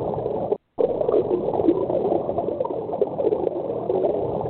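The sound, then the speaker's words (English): Steady, murky water noise, like churning or gurgling liquid, from a broken pipe bubbling up, runs throughout at a fairly loud, even level, with a brief dropout to silence near the start. No one speaks. “That's a water one for sure.”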